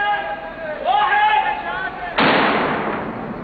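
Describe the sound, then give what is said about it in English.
Voices are heard briefly, then a small water bomb charge in a plastic bottle, used by Iraqi forces to blow a sticky bomb off a car, detonates with a single sudden, loud bang that breaks into a broad hissing wash and slowly fades. “They make a water bomb with a small charge in a plastic bottle. It blows the sticky bomb off the car while the water stops it detonating.”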